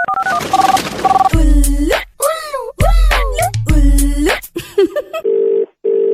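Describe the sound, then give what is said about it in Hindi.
A quick run of telephone keypad beeps dials a number, a loud burst of jingle-like sound follows, then the steady, repeating purr of a phone ringing on the line, as a radio show places a prank call in its 'Ullu Call' segment. “आइए लेते हैं उल्लू कॉल का मजा।”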